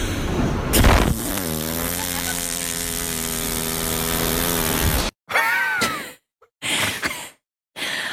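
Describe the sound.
A voice imitates a helicopter with a loud, buzzing hum that wavers slightly for about five seconds, then breaks into short choppy bursts separated by brief silences.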